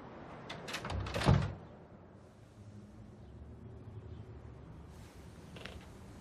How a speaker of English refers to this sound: Shut that fucking door.